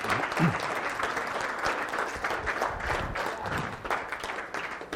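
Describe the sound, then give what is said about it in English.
An audience breaks into spontaneous, sustained applause, a dense, steady wash of many hands clapping at once that holds at a fairly even level for the full five seconds with no voices standing out. “Well, that was pretty spontaneous applause, but I need to remind you that applause isn't probably the best response.”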